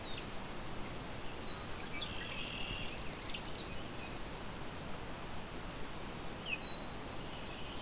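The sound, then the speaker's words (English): A yellow warbler gives a few thin, high chirps, one burst early and another near the end, faint above a steady hiss of wind-like background noise. “There's a yellow warbler.”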